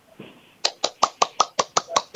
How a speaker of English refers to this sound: Did you hear that? I'm clapping. That was a clap. Really, that was definitely an applause.